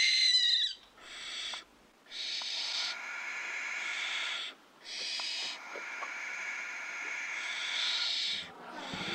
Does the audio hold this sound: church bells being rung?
no